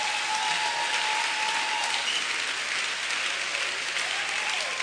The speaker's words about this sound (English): Praise the Lord. Now let's clap for Jesus. Let's clap for Jesus.